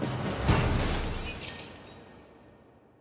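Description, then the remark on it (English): A brick smashes through window glass in a single loud smash with a heavy impact, followed by bright shards tinkling and scattering as the crash fades out over a few seconds, with no voices. “A brick smashes the glass, and he barricades the window.”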